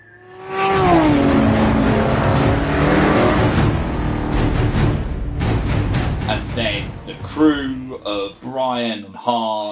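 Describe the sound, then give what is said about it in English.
Loud car engines roar and rev in a fast, chaotic movie chase at the opening of the film, as Mia races to break Dominic Toretto out of a prison bus; the noise is dense for several seconds before easing as voices talk over the fading motor sounds. “Mia kind of racing around to basically break him out of prison. Well, not even prison, but the prison bus on the way to prison.”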